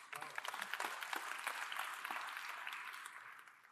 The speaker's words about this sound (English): You can clap.